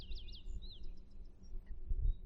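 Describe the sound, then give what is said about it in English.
Birds in the woods sing in high, warbling swoops, followed by a quick series of short, faint chirps, all over a low, steady rumble of background noise. “Notice the birds flying and hopping from place to place, singing their songs, and noticing all the other wildlife at work and at play.”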